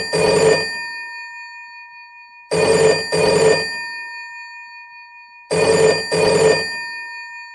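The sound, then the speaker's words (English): An old-style telephone bell rings loudly: one short burst, then two double rings in a steady pattern, with brief silences between them and no voices. “So I'm going to insert phone ringing right here.”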